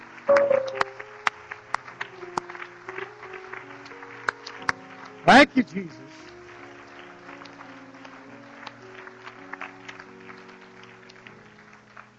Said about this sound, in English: Are you glad you've been baptized in Jesus' name? Why don't we give that Lord a hand clap?